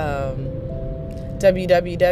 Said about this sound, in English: Man, I'm in traffic once again. Once again, snubbed by this traffic shenanigans.